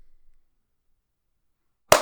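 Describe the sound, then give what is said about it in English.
A single sharp hand clap bursts out loudly after a long stretch of near silence, a bright, crisp smack right at the very end. “Let's do one more clap.”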